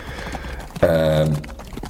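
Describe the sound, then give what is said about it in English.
Fit horses' hooves clip-clop past in a steady patter of light knocks, briefly drowned out midway by a loud, sustained droning tone before the clopping continues, as it is just starting to rain. “So the horses, beautiful beasts, sort of clip-clop by.”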